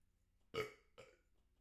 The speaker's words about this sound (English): and got a burp.